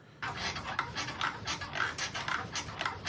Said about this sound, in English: I've decided to find the perfect squeaky bed sex sound effect.